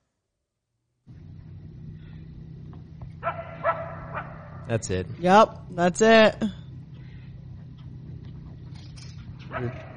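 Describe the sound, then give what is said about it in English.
A short burst of several sharp, yelping animal barks in quick succession at night, heard from a stand, rises over a steady low rumble, with people briefly talking before and after. “That was all night in that stand. Yep. Just barking. All night, just barking.”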